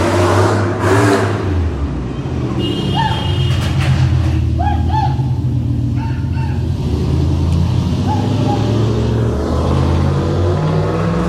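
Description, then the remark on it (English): A car engine revs loudly, its deep, rumbling exhaust roaring steadily for several seconds, with a few faint chirps rising over the noise. “I don't know about you, but I would definitely sleep with that guy just because of his exhaust.”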